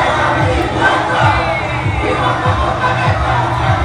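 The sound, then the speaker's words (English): A large street crowd on Ocean Drive, Miami, down the road from the theater, cheers and shouts continuously, a dense, loud roar of many voices with no pauses, much like a concert audience. “Does that not sound like a fucking concert?”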